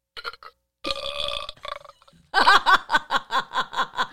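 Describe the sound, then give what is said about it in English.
A buzzy, synthetic fart sound effect from a toy sound machine plays loud, with a few sputtering blasts that give way to a rapid string of rhythmic, pulsing bursts. “The fart sound is the best sound.”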